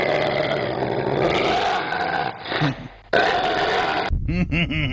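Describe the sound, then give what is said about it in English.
A voice imitates a vicious dog's growl: a loud, rough snarl lasting a couple of seconds, a short break, then another harsh burst that ends in strained, wavering vocal sounds. “This is my dog, Strudel. Wow, he's vicious looking.”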